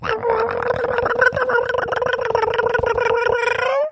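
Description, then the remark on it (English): A person vocally imitates their heavy cat's meowing, which goes in rhythm with her steps as she comes running: a continuous nasal meowing sound that pulses in a steady rhythm, holding a mid pitch and rising at the end. “So her meows go in rhythm with her steps.”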